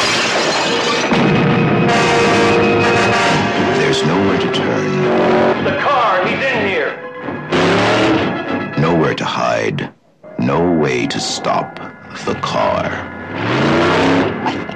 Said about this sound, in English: hear the engine of that car. It's around here somewhere.